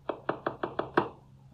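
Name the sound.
knocking on a door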